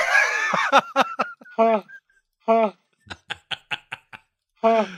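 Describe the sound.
A man makes a series of short, nasal, honking vocal bursts, some quick and clipped, others longer and buzzy, imitating a honk in an uneven rhythm with brief pauses between.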